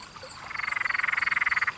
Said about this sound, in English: Or what about the frogs that live in all the cool, damp nooks and crannies?